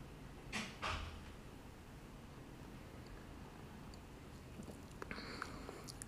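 Two short slurping sips of a canned drink being tasted come in quick succession near the start, followed by a quiet stretch and a few faint clicks toward the end. No one speaks.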